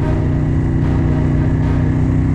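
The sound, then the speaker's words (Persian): The engine of a black eight-cylinder Rolls-Royce Phantom V hums loudly and steadily, a continuous low rumble of the car on the move toward a university, escorted by motorcycles ahead and cars behind, with no voices. “ماشین طبق برنامه توی مسیر به سمت دانشگاه میره.”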